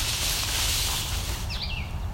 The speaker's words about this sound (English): I think I heard a yellow warbler in the distance. Yeah, over there.